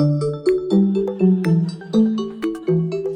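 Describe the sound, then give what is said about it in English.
A hand bell rung by an audience member, Felix Salmon, who writes an economics newsletter for Axios, rings out in a quick run of bright, sustained tones, stepping up and down in pitch with about a dozen crisp strikes that blur into one another, and no voices. “He was our most enthusiastic bell ringer, Felix Salmon.”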